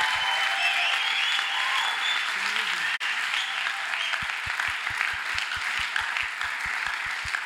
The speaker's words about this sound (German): Aber auch, lasst mal dem Team einen krassen Applaus geben. Ihr seid amazing. Wirklich amazing.